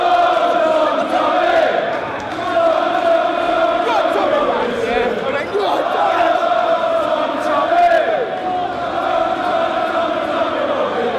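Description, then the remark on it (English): A large crowd chants "Tommy, Tommy" for Tommy Robinson in unison, voices rising and falling in a steady, repeated rhythm, loud and sustained throughout; the chant is used as a ringtone. “We've taken that audio of that chant, oh, Tommy, Tommy, and we've made a ringtone for your phone.”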